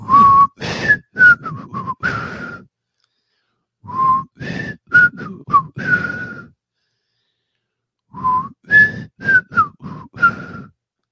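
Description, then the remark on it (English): A person whistles a short, breathy melodic phrase in the intro of a rock song, repeating it three times with brief pauses between, each run of quick notes rising and falling. “I hope he gets the whistle.”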